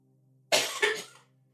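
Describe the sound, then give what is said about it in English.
A person coughs off mic: a single harsh cough with a quick second burst, muffled, over a low steady hum. “I should have muted both mics because you can hear me coughing off mic over there.”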